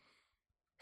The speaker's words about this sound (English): Bless you. She's sneezing out of anger.